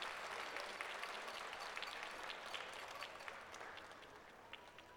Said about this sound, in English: The crowd went wild, and all the animals headed over to the stage for the final announcements.